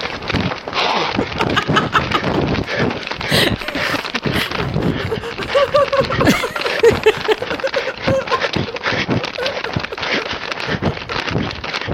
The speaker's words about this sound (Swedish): Han hyperventilerade ju. Han springer efter. Och det låter också som att han viskar kom tillbaka ungjävel in i telefonen snarare än till själva ungjäveln.